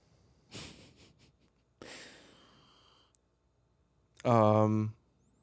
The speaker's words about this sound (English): The sniffing sounds are great.